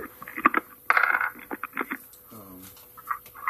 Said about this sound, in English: I dropped my dice on the floor.